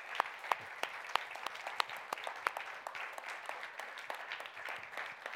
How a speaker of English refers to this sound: Let's applaud the God.